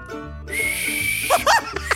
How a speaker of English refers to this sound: Okay, so this is my best attempt at a whistle. I've been practicing.